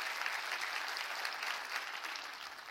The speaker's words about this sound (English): Oh, clap your hands now. Don't get quiet on me now. Don't get quiet on me now.